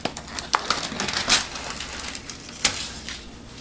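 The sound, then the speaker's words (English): A Freshly microwave meal package, heated in the microwave for 3 minutes, being opened: scattered crinkling and rustling with a few sharp crackles and snaps at irregular moments, moderately loud, no voices. “It's been in the microwave for 3 minutes. Gonna open it up.”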